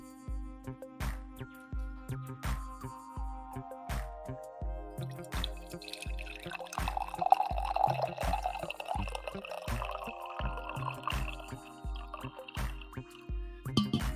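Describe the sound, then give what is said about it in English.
Coffee pours and splashes into a cup, a gurgling stream that swells midway, with a steady rhythmic music beat running underneath throughout. “Influencer 1-2, and we need a coffee pour here.”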